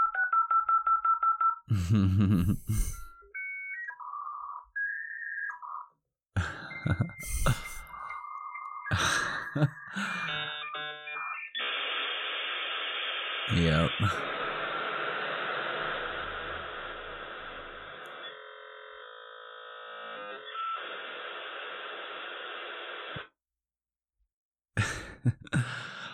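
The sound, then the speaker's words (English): A dial-up modem connecting, played back as an audio file: a steady dial tone, a quick run of touch-tone beeps, then loud screeching, warbling handshake tones and a long hiss of static that cuts off abruptly. One brief word is spoken. “I feel like hopefully the connection goes through and I'll be able to check my email.”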